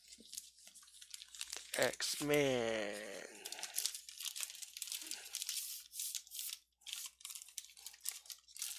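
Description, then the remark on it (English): Plastic comic bag crinkling and rustling in irregular bursts as an X-Force comic (Execution Song part 12, Cable versus Strife) is slid inside, with a brief spoken voice partway through. “I'm gonna put this in good order with my plastic bag.”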